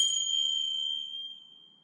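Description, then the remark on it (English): A single bright bell ding rings out clearly, signalling a quick break, then its clear tone slowly fades away over about two seconds, with no voices in the background. “That bell was just to alert you that we're going to take a quick break”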